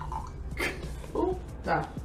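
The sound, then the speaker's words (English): Whiskey is poured again, glugging out of a bottle into a glass in three short gurgling bursts, fairly loud, with a low hum underneath. “All right, I'm going to pour again.”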